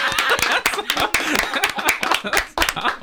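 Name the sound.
people clapping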